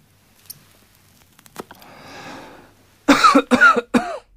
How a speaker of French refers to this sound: C'est pareil quand un fumeur se réveille plusieurs matins de suite en toussant. Sa toux l'inquiète.